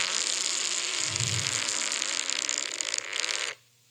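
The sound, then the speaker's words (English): A recording of a man's fart, starting partway through: a long, loud, continuous fart with a raspy, hissing, sputtering quality and a low rumbling burst partway through, running for a few seconds before cutting off abruptly into silence. “So he's mid-fart.”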